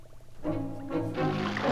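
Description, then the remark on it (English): Water rushes and pours in after a valve is turned, flooding the place, with a steady gurgling roar, starting quietly and swelling louder after a moment, a low tonal hum running through the flow. “Listen, can you hear anything? Sounds like water.”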